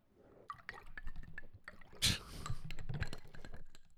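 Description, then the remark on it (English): Water pours into a glass, with gurgling, dripping splashes and a brief louder gush midway, the liquid sound running steadily for several seconds. “This has been the sound of water pouring.”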